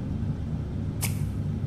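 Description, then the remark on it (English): A heavy dump truck idles with a steady low rumble, then its air brakes release one short, sharp hiss. No one speaks. “Dump truck is here now? Seems like it.”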